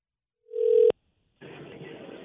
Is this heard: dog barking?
no